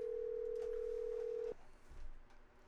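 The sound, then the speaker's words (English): A single steady telephone ringback tone on an outgoing call hums for about a second and a half, then cuts off, leaving faint room noise and a soft low thump. No one speaks. “you better answer this phone.”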